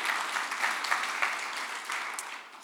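A steady round of applause from an audience, many hands clapping in a dense, continuous crackle that holds at an even level for a few seconds before thinning slightly at the end.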